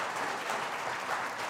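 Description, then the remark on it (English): A crowd claps steadily, a dense, even patter of many hands that holds at a moderate level throughout with no voices over it. “and you should give her a round of applause for that, because, you know.”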